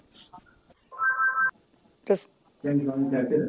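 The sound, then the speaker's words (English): A telephone rings in a short, steady electronic tone lasting about half a second, followed by a sharp click and then voices talking. “Can we shut that phone off, whatever's ringing?”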